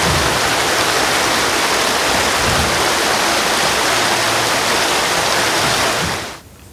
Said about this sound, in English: The rushing water through the small creek, crashing against rocks, making their way to the canal to spread across oceans.